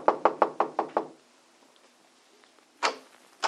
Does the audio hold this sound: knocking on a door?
yes